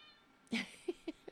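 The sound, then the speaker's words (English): A cat lets out one drawn-out meow followed by three short, chirpy mews in quick succession, close by and fairly quiet against a soft background hum. “He's my emotional support cat, as is Francis Jr.”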